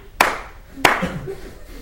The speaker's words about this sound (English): So I clap my hands.